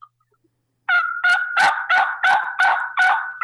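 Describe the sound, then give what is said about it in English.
A series of seven or eight evenly spaced turkey yelps made on a turkey call, loud, in a slow, deliberate rhythm after a brief silence. No one speaks. “So when you Yelp, just remember, slow it down and make a very distinctive, very deliberate pattern, yelping a rhythmic pattern.”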